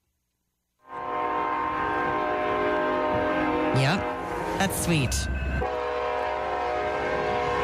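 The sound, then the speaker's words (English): A loud train whistle sounds in one long, steady blast that carries to the end, with a brief voice speaking over it midway. “This text says, a train whistle.”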